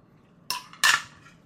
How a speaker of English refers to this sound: You hear that? You hear that? That's carbonated water.